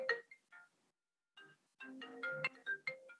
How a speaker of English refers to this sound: What's happening? Is you getting a phone call? You getting a FaceTime? What's going on? Yeah, I'm getting a FaceTime.